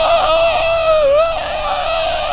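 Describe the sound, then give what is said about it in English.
A person imitates the eerie scream of the pod people from the Donald Sutherland version of the movie: one loud, sustained, high-pitched shriek that holds steady for over two seconds, dipping briefly in pitch partway through, with no talking. “It was like this weird, horrific alien scream, and then they'd all chase the original person down and force them to lie down with a pod and become a duplicate.”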